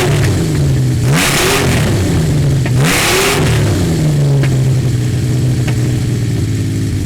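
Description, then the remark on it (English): A warmed-up motorcycle engine idles loudly, then is revved hard twice in quick succession, each rev rising to a roar before falling back to a steady rumble. No one speaks. “Nah, he warmed it up. He gave it. People love revving.”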